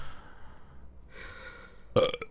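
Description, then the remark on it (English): A man's single short, abrupt, loud burp bursts out near the end, following a few seconds of quiet breathy rustling. “I'm burping, farting, itching, shitting, and scratching, and hunting, and gathering.”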